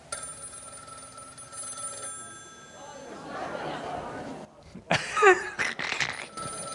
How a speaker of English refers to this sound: If it was in my home, I would have just let it kept ringing. I love answering phones, don't I? In our home, if that happened after 8 p.m, Mum would say, "Who's dead?"